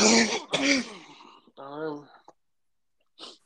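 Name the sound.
coughing and throat clearing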